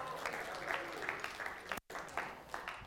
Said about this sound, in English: Give them a round of applause. Give them all a round of applause.